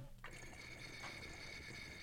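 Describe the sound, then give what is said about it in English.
Water pours steadily into a bong to set its water level, starting after a brief quiet moment and continuing as an even splashing stream with a ringing, hollow tone from the filling vessel. “Let's see if this is the water level I want.”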